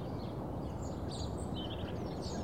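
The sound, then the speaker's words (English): Someone whistles an imitation of birdsong: a string of quick, high, chirpy tweets, fairly faint, over a steady low background rumble. “Birdsong. He did. I'm still birdsonging.”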